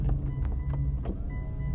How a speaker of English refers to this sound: I'm about to roll up the windows.